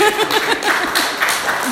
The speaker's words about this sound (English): Clapping is not necessary.